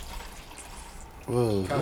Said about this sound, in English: Hen or Patron? I hate your pour.